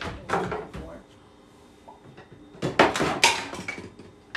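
A kitchen blender being set up to make onion juice: hard plastic clunks and clatters as parts are fitted together, a few quick knocks early on and a busier cluster of clicks later.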